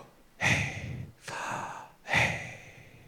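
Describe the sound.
A person breathes in and out as a demonstration: three slow, audible breaths follow one another, an inhale and exhale pattern with airy, hissing texture, fairly loud, with no talking.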